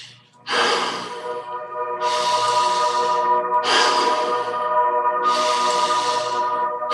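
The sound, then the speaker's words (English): Deep, forceful breaths alternate steadily, each long noisy inhale followed by a strong exhale, loud with no talking, repeating about four times in an even rhythm, during a guided deep-breathing exercise. “Keep breathing nice and deep.”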